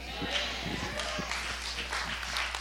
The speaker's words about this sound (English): I'll clap for myself.